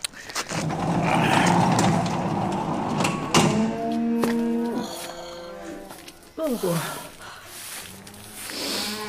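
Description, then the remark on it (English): Welsh cattle in a barn, about 35 cows, moo loudly, a long drawn-out low from one animal followed by shorter calls from others, over a steady rustling background. “You want to see your Welsh cows?”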